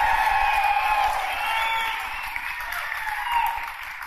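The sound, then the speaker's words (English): A live comedy audience in Denver applauds and cheers steadily for comedian Josh Blue, dense clapping mixed with whoops and shouts, sustained at a fairly even loudness for several seconds with no one speaking. “So Todd Glass, you got to try to get a bigger round of applause for what you say after I give your upcoming dates.”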